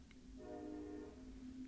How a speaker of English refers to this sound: I hear the train going by your house. Oh yeah, train's coming through town.